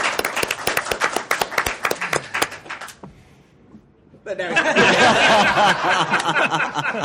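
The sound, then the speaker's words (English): Audience applause: a few seconds of loud, rapid, scattered clapping, then a brief lull before a loud swell of crowd noise with cheering and laughter mixed in. “Show of applause.”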